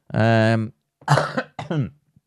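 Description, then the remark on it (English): A drawn-out voiced groan, then two rough, chesty coughs in quick succession, fairly loud, with a slight wheezy rasp. “Still got a bit of a chesty cough thing going on there.”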